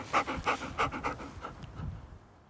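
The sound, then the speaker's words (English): A female dog named Rain pants in quick, steady breaths, five or six bursts in a row, then the panting tapers off into softer, lower breathing. No voices are heard. “Good girl, are you back?”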